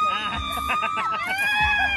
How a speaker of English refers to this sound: But I'm going to shriek like a little girl. We actually have a clip of you shrieking.